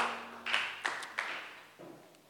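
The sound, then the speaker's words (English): An audience at a weekday church service claps their hands for Jesus in a steady, hissing wash of applause, with a few sharper bursts standing out before it thins and tapers off near the end. No one speaks. “Clap your hands together for Jesus, and you may be seated.”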